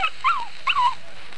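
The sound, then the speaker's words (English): Two short, high-pitched puppy whines in quick succession, each sliding downward like a yelping whimper, clear with nothing else around them. “Quiet, you pups, quiet.”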